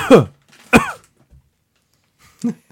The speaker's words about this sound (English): Can you cough again? There you go.